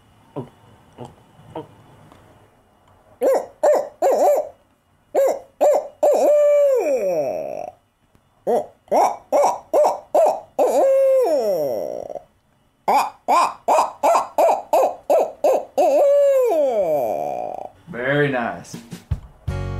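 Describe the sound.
A man's voice imitates an owl, giving three long rhythmic series of deep, resonant hoots, each ending with a drawn-out descending call, preceded by faint gulping sounds as he swallows air for 3 or 4 gulps to get the right tone; loud.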